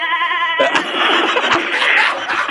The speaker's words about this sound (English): There goes the goat.